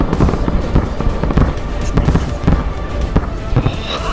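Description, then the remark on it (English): A massive explosion rumbles on in a dense, loud barrage of booming blasts and sharp crackles, one burst after another with no letup, overwhelming. “I'm sure we're out of sync as far as playback here, but I'm just watching the massive explosion.”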